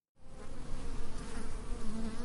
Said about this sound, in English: You guys hear that? You better believe we're talking about bees.